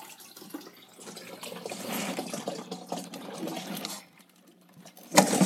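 An aquarium filter is knocked over: water churns and splashes steadily for a few seconds, with a motor-like buzz underneath, then stops abruptly before a brief sharp clatter at the end. No one speaks.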